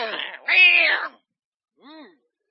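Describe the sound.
A person imitates Patches, the hood cat, giving a drawn-out, wavering meow followed by a pause and a shorter, softer mew, both fairly loud with no other sounds around them.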